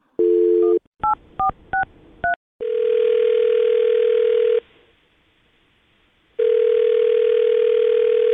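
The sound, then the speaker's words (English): A phone call being placed to a man's phone number: a brief tone, a quick run of touch-tone dialing beeps, then two long, steady ringback tones separated by a pause of silence. No voices. “Well, call his phone number right now and see if we can get him on the phone, okay?”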